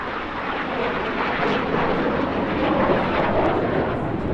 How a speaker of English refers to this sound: We don't hear too many of them in the sky these days. Aeroplane, yes, aeroplane. Very good, very good.